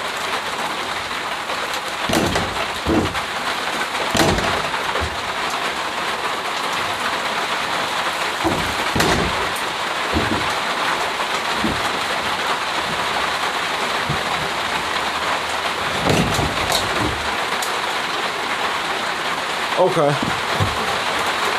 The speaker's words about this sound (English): It's getting busy out here now. It's getting super rainy.